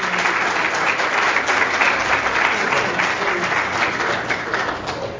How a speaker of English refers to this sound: I know you have to leave, so I hope everyone will treat you to one last round of applause.